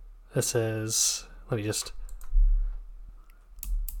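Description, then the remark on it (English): A voice speaks briefly, then a Newton's cradle desk toy clicks several times, light, sharp metallic taps, fairly quiet and spaced irregularly toward the end. “Oh yes, I'm hearing clicking now for sure. Yeah, I got a Newton's Cradle.”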